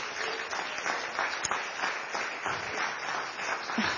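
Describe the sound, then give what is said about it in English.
An audience claps together in praise to the Lord, a dense, steady wash of applause, many hands overlapping at a fairly even loudness for the whole stretch with no voices standing out. “Give a clap to the Lord.”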